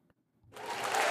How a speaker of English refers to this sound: So, yeah, I just wanted to put like an applause. I just wanted to make sure that it was on recorded on the On my device.